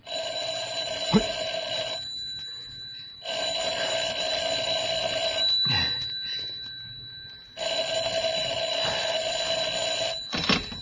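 A telephone rings in three steady bursts with short pauses between them, a bright, buzzy electric bell that is loud, with a few faint thuds in the background and no one speaking.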